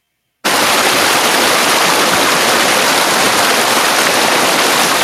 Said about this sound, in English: Is it water flowing? It's a waterfall. It's a waterfall. It's a waterfall.